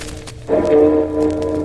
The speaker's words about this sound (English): the ceremonious pealing of Big Ben.